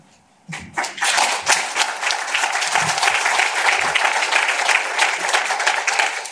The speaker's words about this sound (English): And the applause for the 6 credit ratings was not lost on me.